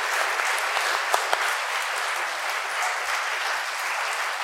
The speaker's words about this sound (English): Can you give these three wonderful people a huge round of applause?